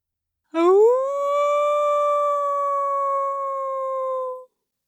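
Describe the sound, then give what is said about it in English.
A single long wolf howl rises quickly, then holds a steady, clear pitch for about four seconds before cutting off, loud, with no other sounds around it. “The other thing that slowed them down was when they stopped once and started to howl.”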